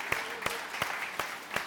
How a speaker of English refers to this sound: So just again, can we just all celebrate mums and femininity this morning? Let's give our girls a big round of applause. Come on. Come on, better than that.